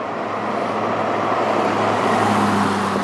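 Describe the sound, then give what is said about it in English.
A slow-moving monster truck rumbles past with a low, muffled engine drone, steady and fairly loud throughout, with no talking. “Surprised by how well muffled that monster truck was.”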